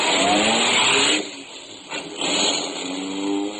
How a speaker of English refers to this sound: I packed him in the car, drove off in high.